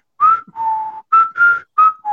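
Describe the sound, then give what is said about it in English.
A person whistles a short tune: six clear notes in three quick pairs, each a brief rising note followed by a steadier held one, loud and alone with no talking. “And the whistle went just like this.”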